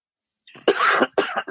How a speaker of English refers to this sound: Yo, don't fucking cough in a podcast, kid.